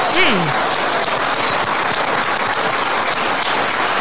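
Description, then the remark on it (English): A crowd in a played recording of Ron DeSantis applauds steadily for the whole stretch, a dense, even wash of many hands clapping at the same loudness, with a brief voice call at the very start, after he says Florida government agencies forcing vaccines as a condition of employment will face fines. “And that they clap for.”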